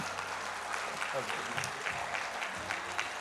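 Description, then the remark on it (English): A crowd claps steadily in a dense, even round of applause for everybody who wore an ugly sweater that morning, lasting the whole few seconds, with faint voices murmuring beneath the clapping. “Y'all, for everybody that wore an ugly sweater this morning, come on, give them a little round of applause.”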